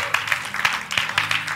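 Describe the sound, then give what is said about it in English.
An audience claps hands together, a dense, steady patter of many overlapping claps with rhythmic louder accents falling roughly every third of a second, carrying on without pause. “Oh, clap your hands and shout glory to God.”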